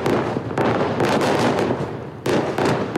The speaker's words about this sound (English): In northern Gaza, there were massive explosions after dark.